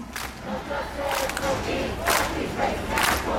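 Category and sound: crowd, protest crowd chanting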